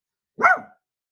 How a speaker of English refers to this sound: That would be our dog, one of. Maybe he won't shit himself.